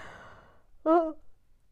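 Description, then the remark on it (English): A person yawns: a long, breathy intake of air fading out, followed by a short, voiced, groaning exhale. Moderately loud, with no talking around it. “Okay, 2 paragraphs in and I'm already yawning.”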